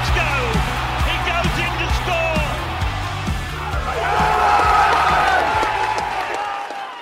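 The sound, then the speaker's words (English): A stadium crowd of 3,500 fans at the SCG roars and cheers continuously on a cold, wet Thursday night as the Roosters play the Raiders, loud and dense, with a steady rhythmic thumping beneath. The noise swells midway with shrill whoops before cutting off near the end. “On a cold and wet Thursday night at the SCG in front of 3,500 screaming fans, our Roosters took on the Raiders in what was known as a grand final rematch.”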